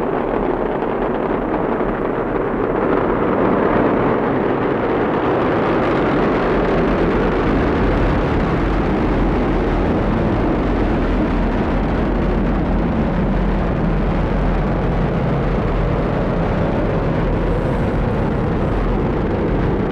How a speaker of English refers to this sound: And liftoff of CRS-26, go Falcon, and happy Thanksgiving, ISS. That's right, liftoff of SpaceX's Falcon 9 rocket for the 26th cargo resupply mission, bringing new science experiments and solar arrays to the International Space Station.